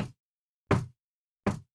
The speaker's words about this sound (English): So she says, oh, yeah, the only thing I noticed, she says, is I'm woken up sometimes by a knocking, like a knock.